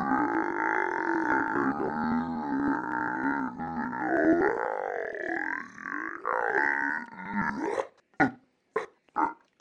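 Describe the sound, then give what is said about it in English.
A person's long, loud, deliberate burp after drinking Diet Coke rumbles for about eight seconds, wavering in pitch, then trails off into a few short, choppy bursts. “Here, let me burp for you.”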